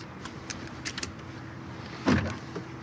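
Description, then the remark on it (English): Inside a car, a few light clicks lead up to one solid mechanical thunk as the car's standard power door locks engage, fairly loud against a low cabin hum. “Power door locks, standard, of course.”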